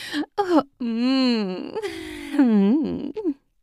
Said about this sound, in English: I gave a squeeze, which elicited a yummy moan from her.